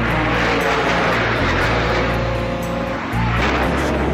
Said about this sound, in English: The plane is going down.